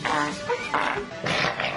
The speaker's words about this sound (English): Sound like the asses look. Yes. The sound goes with the fart. Right. They all have their own personality.